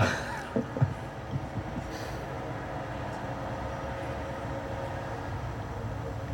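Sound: truck passing by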